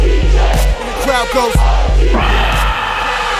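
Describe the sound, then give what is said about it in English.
A loud crowd roars and cheers, with whoops and shouting voices rising over a dense, steady wall of noise that fills the whole clip. “And the crowd goes.”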